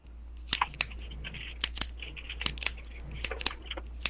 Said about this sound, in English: No, it's a pen. Clicking of a pen, putting on a pen.